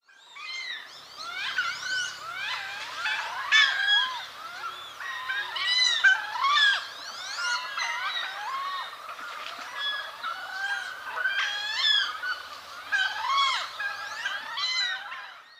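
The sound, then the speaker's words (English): Wood ducks (Aix sponsa) call continuously, a dense chorus of rising, squealing whistles that overlap one another for the whole stretch, steady in loudness, with no one talking. “Aix is a genus including two duck species, the wood duck and the mandarin duck, both species with flamboyantly dressed males.”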